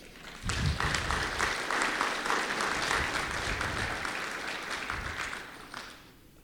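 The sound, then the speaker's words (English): A church audience bursts into sustained applause celebrating 16 baptisms that year, dense, steady clapping that holds for several seconds at an even level, then tapers off as the clapping thins out. “We celebrated 16 baptisms this year. You can clap.”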